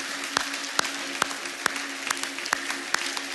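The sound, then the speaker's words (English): A church audience claps together to welcome children coming down to the front, in a dense, steady wash of applause, with a few sharper individual claps standing out in an even rhythm. No one speaks over it. “Keep clapping.”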